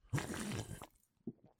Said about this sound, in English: I'm just going to have a sip of this delicious non-sponsor of the show, Fresca. Hey, everyone. I'm John Hodgman, about to take a sip of Fresca. Do you have misophonia? You may want to turn it down.